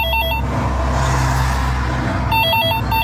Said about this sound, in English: Now, just so everyone knows, this is the ringtone of a payphone.